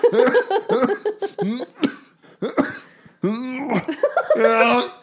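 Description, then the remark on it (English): A loud coughing fit: a run of harsh, uneven coughs and throat-clearing bursts over about five seconds, mixed with strained, laugh-like voiced sounds between them. “Still clearing the cough. That's gonna go over great on the audio.”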